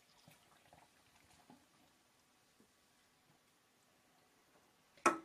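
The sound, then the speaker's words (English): Cherry limeade hard seltzer is poured, a faint, steady fizzing and crackling of bubbles, ending with a sudden loud clunk or splash right at the end. “Can we pour it fast or no?”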